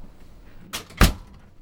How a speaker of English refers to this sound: You can help me by closing the door. Sure, happy to.